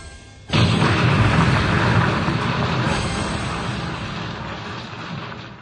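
A sudden, massive explosion of conventional explosives set off by Batman bursts in with a deep, loud boom, then rolls on as a heavy rumbling roar that slowly fades over several seconds. No voices are heard.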